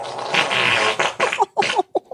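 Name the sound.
fart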